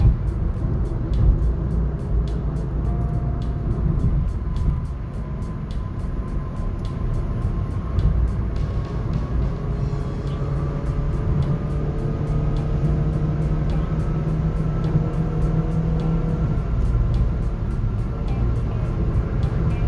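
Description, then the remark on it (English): Steady road traffic rumbles throughout, with engine tones rising and falling as vehicles move. The noise stays fairly loud and continuous, with no voices. “Traffic was happening, so I had to slow down a little bit, and I forgot where I was.”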